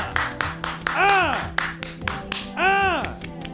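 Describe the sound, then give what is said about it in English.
Steady, rhythmic hand clapping from a small group, sharp and fairly loud, with a couple of rising-and-falling vocal whoops over it. “Oh my gosh, an applause.”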